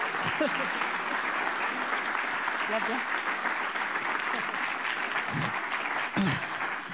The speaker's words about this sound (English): On behalf of Helping Hands Healing Hearts, we would like to present this plaque of appreciation to Compassion Charity Shop for your continuous support. Give us all a round of applause.